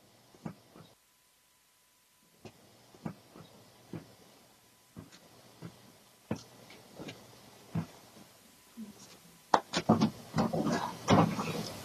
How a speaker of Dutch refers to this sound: Er is ook geluid van, luister maar even. Het klinkt gewoon als een tv die wordt neergezet bij de voordeur, maar is toch leuk.